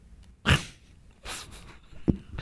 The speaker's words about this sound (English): What the hell was that fart sound in the background?